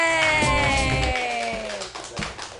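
An audience at a comedy show claps and cheers for a comedian over a sustained, tonal background, with a whoop rising among the applause before it thins out toward the end.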